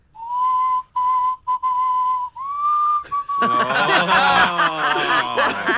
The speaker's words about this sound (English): Can you do emotions? Could you convey happiness through the medium of whistle? Happiness? Yeah. Oh, lovely.